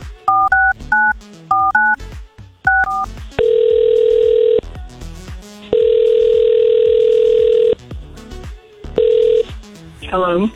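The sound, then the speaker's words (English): A quick run of bright two-tone telephone keypad beeps as a call is placed to a woman, then a steady telephone dial tone that sounds in long and short bursts. Voices talk faintly underneath. “And we're going to call her, see if we can get her to answer real quick.”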